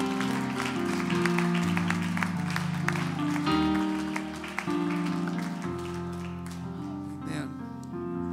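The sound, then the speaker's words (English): A church audience applauds, clapping their hands to the Lord for the word given that day, a dense wash of steady clapping over sustained, swelling organ or keyboard chords that carry on throughout. “Clap your hands to the Lord for giving us a wonderful word today.”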